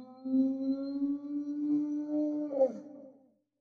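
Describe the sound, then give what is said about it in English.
A long, low, moaning creature call, a 'brontosaurus whale' sound effect, holds a steady droning pitch for about three seconds, then swoops briefly before fading out. No one speaks. “We're going to start off with some sounds because we're not quite sure what to do. Brontosaurus whale, whatever that is.”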